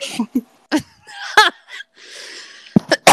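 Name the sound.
cough into a microphone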